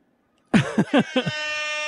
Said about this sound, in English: Air horn. Air horn club sample. I wonder what that one sounds like.